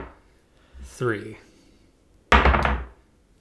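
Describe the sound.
Two heavy six-sided dice are rolled onto a table during a tabletop role-playing game, tumbling in one short, loud burst of thudding knocks and clatter, preceded by a brief murmur of voice.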